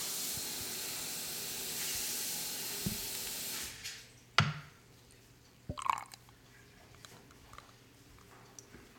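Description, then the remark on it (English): A beer called Espressway pours into a glass with a steady, hissing fizz for several seconds, then stops abruptly, followed by a couple of sharp clinks and soft knocks. No one speaks. “I'm going to pour it up.”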